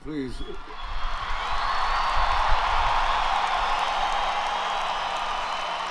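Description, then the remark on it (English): A large crowd at a band concert breaks into sustained applause and cheering as Gloria Steinem is introduced, a steady dense roar of clapping and voices that swells after a brief voice at the start and holds loud to the end. “… introduces Gloria Steinem to the crowd, and she gets a very warm reception.”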